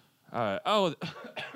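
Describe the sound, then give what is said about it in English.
A person mimics a few coughs with their voice: four short, voiced, throaty bursts in quick succession, fairly loud, with a theatrical throat-clearing quality. “He coughs.”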